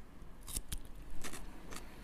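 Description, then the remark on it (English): Crisp, wet crunches as someone bites into a pickle and chews, four or five sharp bursts at an uneven pace, fairly quiet, with no talking. “Oh, my God. Good crunch.”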